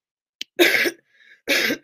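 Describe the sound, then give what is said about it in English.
Two short, harsh coughs muffled into a shirt, separated by a brief pause with a faint wheezy breath between them, and no talking. “But anyway, and I'm, like, in the room by myself, and I'm still coughing in my shirt.”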